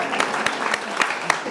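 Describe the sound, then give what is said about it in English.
A brief burst of audience applause for a question just asked, a dense steady patter of many hands clapping with a few sharper, louder claps standing out at moderate volume. “We should give a round of applause for the question.”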